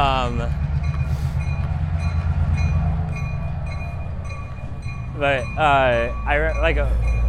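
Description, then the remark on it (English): A train rumbles past on its way back, with a heavy, continuous low roar and a steady high ringing bell tone above it, and voices break in near the end. “It is coming back. It's the same guy. You gotta say hello. They gotta get that ding ding ding in there for this over my head shot.”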